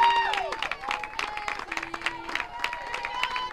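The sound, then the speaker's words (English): The Auburn crowd rises to its feet and applauds steadily as the count runs full, dense clapping and scattered cheers filling the whole clip with a constant roar, a few whistles and tonal calls rising above it. “As the Auburn crowd rises to its feet.”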